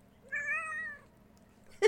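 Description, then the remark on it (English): A single drawn-out meow from River Tam, a cat, rising slightly then falling, with clear harmonic tones, followed by a brief soft noisy burst at the end. “That's River Tam. She's filling in for Logan today”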